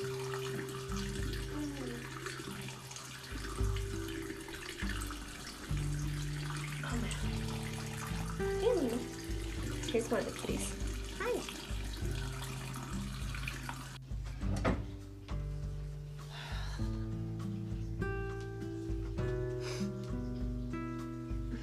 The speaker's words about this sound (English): I always have to run my hot water for a while before it gets warm, so hurry up. I want to wash my face.